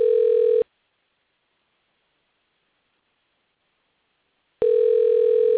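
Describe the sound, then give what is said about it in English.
A telephone line ringing: a short electronic ring tone, then about four seconds of silence before the next ring begins. The tones are clear and steady, with no one speaking. “but I hear ringing, a phone ringing.”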